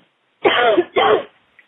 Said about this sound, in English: Go ahead and cough it out. You can do it. You can do it.